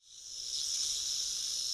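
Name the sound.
snakes hissing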